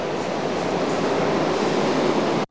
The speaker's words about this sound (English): Train what tracks. Was that? That was train tracks, man. You have a train track sound already? Yeah, I do.